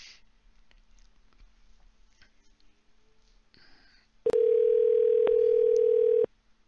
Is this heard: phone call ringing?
yes